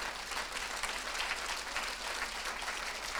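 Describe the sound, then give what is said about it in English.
Steady, dense applause from a large church audience, clapping unto God for the apostle of the house, fills the space, many hands clapping together in a continuous wash of sound with no voices standing out. “Please, before you take your seat, can we honor God by clapping unto God for the man of God, the apostle of this house?”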